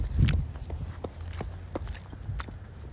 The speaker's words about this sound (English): That was not me running either. That's somebody else running by on foot. You never know what you're going to encounter when it's playing on the street.